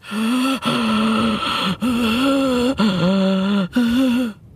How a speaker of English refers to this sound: All the stoner could hear was their own heavy breathing.